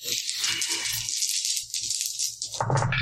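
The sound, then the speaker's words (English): Dice rattle and clatter continuously for about three seconds as they are rolled for a melee attack roll, a bright scratchy shaking with scattered soft knocks, ending in a louder tumbling burst. No one speaks. “So you need to make another melee attack roll. Same dice as before.”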